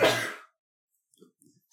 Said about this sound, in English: still sneezing. I guess that didn't work.